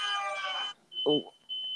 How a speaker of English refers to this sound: Did somebody just win? No. We have 4 fire detectors outside of our doors, so I think they're all going off right now.